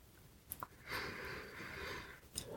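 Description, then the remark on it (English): A couple of quick sniffs lead into a long, steady breath drawn in through the nose as a man smells a sexual partner's genitals, followed by another short sniff. No one speaks. “I'm not done smelling it.”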